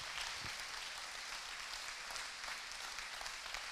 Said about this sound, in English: Now appreciate him one more time while you're standing. Just appreciate him and clap your hands. Everybody, just clap your hands.